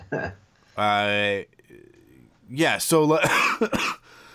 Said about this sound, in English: Sorry, early in the morning, and I'm still just getting over this cough.